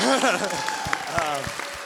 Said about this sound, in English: And so I guess we should give you a round of applause.